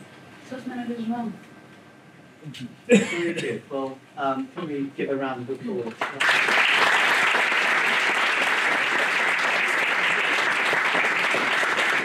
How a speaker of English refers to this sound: Well, can we give a round of applause for being so open, with your point of view.